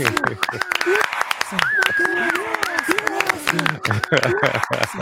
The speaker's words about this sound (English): I think I heard the loop point on that clap sample. Oh, you found it? I was trying to keep it hidden, but yeah, you could tell when it came in, right? Not bad, though.